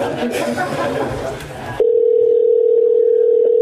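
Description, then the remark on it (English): Busy, mixed background chatter cuts off abruptly and is replaced by a steady, loud, single-pitched telephone dial tone that hums on without a break as a call to someone in Canada is placed. “Let's call him one more time.”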